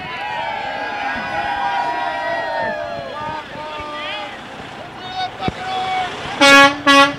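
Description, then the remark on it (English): Two loud, blaring truck horn blasts from a truck driving school honk near the end, forceful, following several seconds of murky background noise with voices and shifting tones. “Dad Van is located outside of a truck driving school, if you can't tell. And that's why this keeps happening.”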